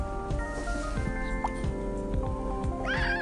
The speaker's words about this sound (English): Hello, Rue. My cat, Rue, says hello. Say hello to everybody, Rue.